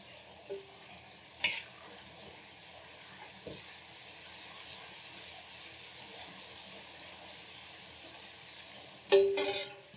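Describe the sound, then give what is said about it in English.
Steady sizzling of lamb quickly frying in hot oil with Thai chilies, kaffir lime leaves, lemongrass and ginger, a continuous crackling hiss, punctuated by a few sharp clinks and scrapes of utensils, with a louder clatter near the end. “And while that's frying, we're gonna start off with our Panang curry, a little bit of oil.”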